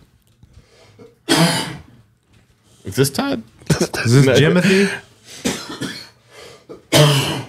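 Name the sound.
repeated coughing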